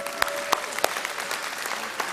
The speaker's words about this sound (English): And these guys, wonderfully, what was it, Friday? You got a call and said yes. So first of all, give them a huge round of applause for being here.